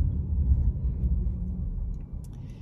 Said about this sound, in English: Kid running out in pajamas, having the time of his life out here in the storm and the wind.